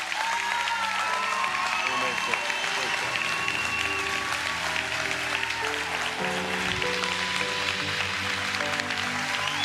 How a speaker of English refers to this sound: the people around you, they're going to applaud as loud as they can. But it will not compare to the applause that the angels in heaven will be doing when you stand to your feet and remain standing.